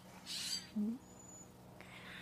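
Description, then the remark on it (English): A bird calls once with a short, low, upward-sliding note, just after a brief hissy burst. A thin, faint whistle follows, over quiet outdoor background with no talking. “Hello, what is that bird?”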